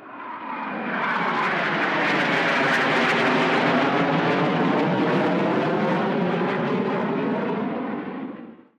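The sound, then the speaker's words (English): A fighter plane's engine roars loudly as the aircraft flies past, its droning pitch sweeping and shifting for several seconds before fading out. No voices. “His job was to fly airplanes off huge ships called aircraft carriers.”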